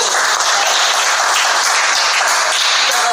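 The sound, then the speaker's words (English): A crowd applauds the speaker's degree from Hampton University, a loud, dense wash of many hands clapping at once with no single claps standing out, sustained evenly for the whole few seconds without talk over it. “Clap that up, matter of fact.”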